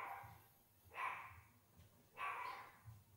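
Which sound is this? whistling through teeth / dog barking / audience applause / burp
dog barking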